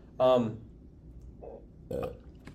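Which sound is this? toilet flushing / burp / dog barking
burp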